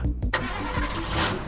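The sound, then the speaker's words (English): A car engine that has just died, about a mile before Carn Hollow Village and with a quarter tank of gas, cranks with a quick burst of grinding, chugging turnover, loud, sputtering over and over without catching. No voices are heard. “my car just died.”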